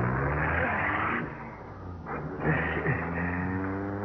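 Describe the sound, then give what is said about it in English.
A car engine roars, revving hard and pulling away at speed as the driver is urged to step on it, its steady rumble swelling again after a brief dip as it accelerates off. “We got the guy's clothes, a little dough, and a car. Let's go. Come on. Step on it.”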